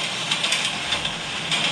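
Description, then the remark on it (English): A white noise recording of a train ride: steady rushing rumble, a broad continuous hiss with faint rhythmic clicks and swells, like wheels over rail joints, with no voices. “Okay, let's do, what about, train ride.”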